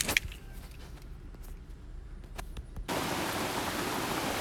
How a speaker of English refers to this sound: All right, we are in the rain in the Ozark Mountains in Arkansas. It's a beautiful, beautiful place. We're camping. Boy Scout troop summer camp, and it's been wonderful. We're in a rainstorm, so I thought I would record it because I'm by myself here